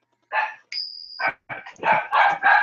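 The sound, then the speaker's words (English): A dog barks and yips in a rapid series of sharp, excited calls, with one high whining tone early on, loud, with no talking over it. “Motherfucking dog.”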